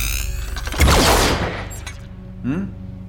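A single loud cannon blast, fired at a robot as a test, its harsh crackling roar fading over about a second, followed by a brief warbling electronic chirp.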